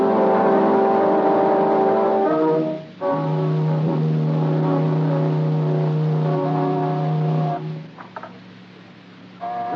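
A car engine accelerates with a steady droning hum, its pitch rising and dropping through several gear shifts. The sound is loud, with no voices.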